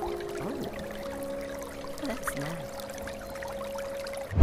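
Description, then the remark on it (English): Steady rushing water pours continuously like a small waterfall, with a faint droning hum running underneath. A voice speaks briefly over it, and a sudden bump closes the sound. “Perhaps you'd like to hear the soothing sounds of an elegant waterfall.”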